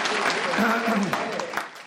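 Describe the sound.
Audience applause fills the moment, a dense, steady wash of many hands clapping at close range, with a few voices calling out over it throughout.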